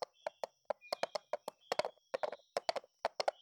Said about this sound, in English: So he turned around and continued to gallop in the direction of his home